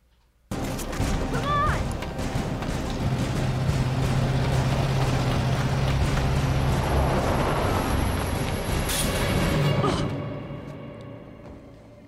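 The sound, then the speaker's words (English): A truck engine roars in a Latino Victory Fund political ad against Virginia gubernatorial candidate Ed Gillespie that depicts a Republican truck mowing down children, starting abruptly and holding a loud, dense rumble for about ten seconds before cutting off into a short fading tail. “Democrats just last week ran an ad against Virginia gubernatorial candidate Ed Gillespie depicting a Republican truck mowing down children of ethnic minority.”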